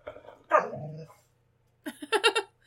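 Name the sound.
dog growling and barking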